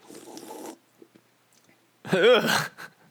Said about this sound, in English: Well, I've just opened it. Let me take a sip. This is ASMR for all you freaks out there.